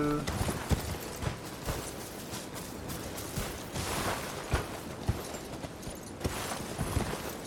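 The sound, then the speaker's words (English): Steady clip-clopping of horse hooves in a video game, a rapid, fairly even rhythm of sharp knocks over a busy background wash, moderately loud. “I think we just need the horse to get up the first time.”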